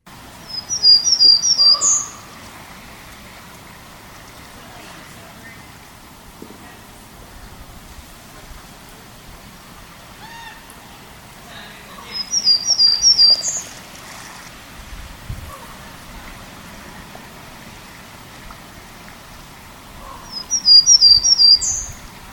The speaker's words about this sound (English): So once again, that was a Townsend's Warbler song. Pretty distinctive, but it was one of the ones that took me the longest to figure out because it does vary from place to place, and a lot of recordings were recorded elsewhere.